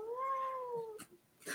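A female cat, upset by a person in her space, lets out a long, drawn-out angry yowl lasting about a second, fairly loud, followed by short sharp hissing bursts.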